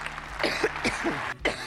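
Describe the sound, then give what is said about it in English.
A former prime minister coughs in a quick run of rough, throaty bursts, fairly loud, with a brief pause before a final cough. “starting off at number 10, it's former Prime Minister Theresa May coughing”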